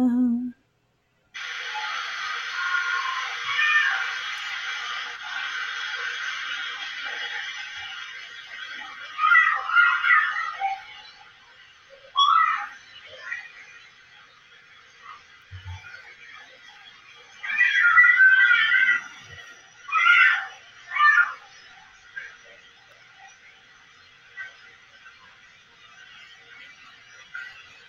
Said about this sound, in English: So that's children screaming.